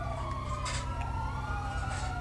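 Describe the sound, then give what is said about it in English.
A stolen fire truck's siren wails steadily during a pursuit, over a heavy, rumbling engine, loud, with brief bursts of hissing noise cutting in. “It's going to be on a pursuit of a fire truck, stolen fire truck.”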